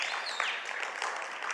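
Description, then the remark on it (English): An audience claps hands in a dense, steady patter of overlapping claps, with no pause across the short stretch and no voices clearly heard. “If you're saved and you know it, clap your hands.”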